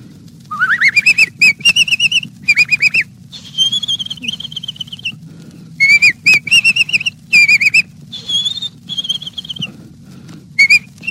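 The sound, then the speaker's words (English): A person whistles a song melody in quick, bird-like trilling phrases. The pitch slides up and warbles, and the whistler struggles to reach the high notes. Short pauses separate the bursts over a low steady hum. “Do whistlers always have this kind of trouble when the temperature isn't just right?”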